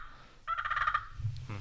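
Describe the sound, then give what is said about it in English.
A turkey purr made on a turkey call: a short, rolling, rapidly fluttering trill lasting about half a second, fairly clear, followed by a few soft handling bumps. “But you know, some of the sounds that you might hear a turkey make is a purr.”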